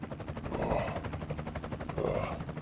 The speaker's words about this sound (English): Hey, get this chopper closer.